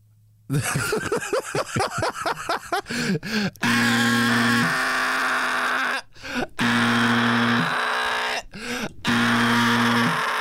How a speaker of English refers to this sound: This the worst alarm. You lost. This alarm sound like his throat hurt. This alarm sound like it need a horse.